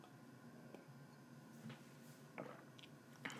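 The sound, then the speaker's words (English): Someone quietly sips water, making a handful of soft, wet clicks and swallowing sounds spaced irregularly over a few seconds, with no talking. “Need a little water.”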